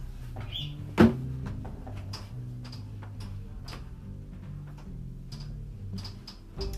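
A dog opens a door with one sharp, loud clunk at the start, followed by scattered faint clicks and light rattles over a steady low background hum.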